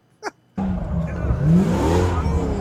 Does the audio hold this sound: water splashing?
no